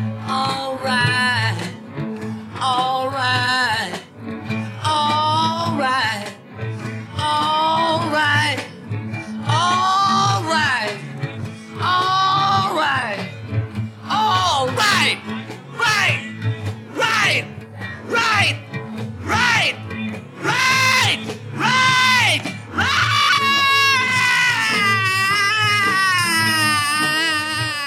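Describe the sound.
A rock song's long, loud ending, with a raw, strained male voice yelling and howling lines over a steady pounding band, the shouts coming in repeated bursts and growing more frantic toward the close.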